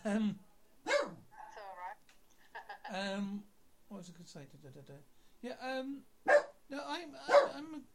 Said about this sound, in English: Sorry about dog in the background.